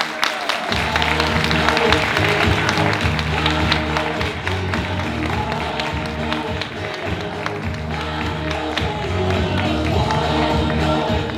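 A crowd applauds steadily as a speaker is welcomed to the stage, dense clapping filling the whole stretch at an even, loud level with a few scattered cheers, while a low musical hum runs beneath.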